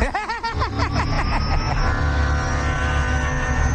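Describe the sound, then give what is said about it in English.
A helicopter lifts off the ground. Its engine winds up into a loud, steady roar over a deep, rapid rotor thumping that stays continuous throughout. “Well, we got that chopper lifting off the ground.”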